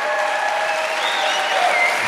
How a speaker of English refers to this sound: Listen, this has been really, really fun. You guys are great. I'm glad we came to Canada for this. Give yourselves a hand.